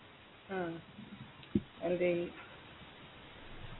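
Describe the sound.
A steady, grainy hiss runs underneath a narrow, phone-quality line throughout, with a couple of brief muffled voice sounds and one sharp click cutting through the static.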